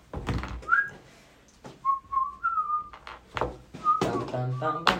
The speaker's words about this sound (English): when he whistles. He goes bum bum bum.